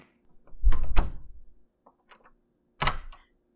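A front door swings shut with a heavy thud, followed after a short pause by a single sharp metallic click as it is locked; no voices.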